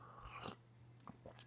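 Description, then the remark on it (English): A quiet sip of coffee: a short airy slurp followed by a couple of soft gulping clicks, with a low steady hum underneath and no one talking. “And let me have a sip of coffee and I'll dive into this.”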